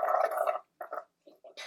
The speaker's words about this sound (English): Can you stop with the slurping?